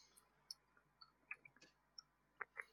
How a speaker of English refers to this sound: God damn keyboard.